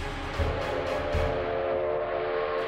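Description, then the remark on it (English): The whistles of two steam locomotives racing toward each other on a trestle high over a ravine shriek in a loud, sustained, harmonic wail, with a few rhythmic chuffing bursts underneath at the start, then the whistle tone holds steady to the end. “Both engines shrieked their terrified whistles.”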